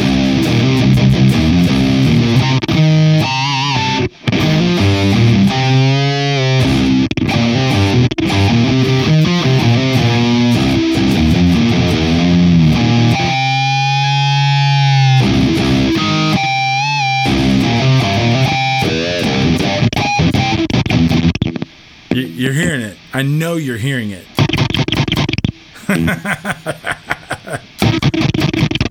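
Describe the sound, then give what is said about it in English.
Loud, saturated fuzz guitar through a Bixonic Expandora pedal switched into Fuzz Mode, with no low-end cut, plays ringing notes and bends, then breaks into a gated, Velcro-like sputter near the end, with choppy cutouts and chirpy bursts. A man speaks briefly over it. “And dude, this thing gets Velcro sputter. I mean, it is gated fuzz, but it is so good.”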